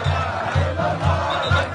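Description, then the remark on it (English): A jubilant crowd cheers in the streets of the capital, Khartoum, as word of Mr. Bashir's arrest spreads, a loud, dense roar of many voices with a steady rhythmic pulse repeating roughly twice a second, like chanting or drumming. “As word of Mr. Bashir's arrest spread through the capital, Khartoum, the crowds were jubilant.”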